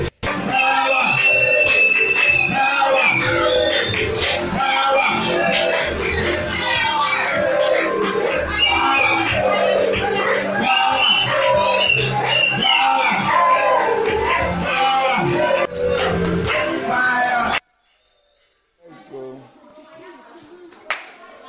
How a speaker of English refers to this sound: You see, now she could count the claps, right? Mwaona sasa angeweza kuhesabu hayo makofi.